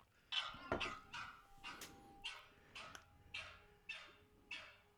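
A husky dog, taunted by a small dog, barks over and over in a steady rhythm, about eight sharp yelping barks with a howl-like, drawn-out edge, loud, with no talking.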